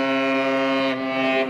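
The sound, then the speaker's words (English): A Russian cargo ship's horn blares in one long, steady, loud blast, a deep harmonic-rich tone that holds without a break throughout, announcing that the ship is passing through the Bosphorus waterway at Istanbul on its way from a Black Sea port to international markets. “A Russian cargo ship announcing it's passing through the Bosphorus waterway on its way from a Black Sea port to international markets.”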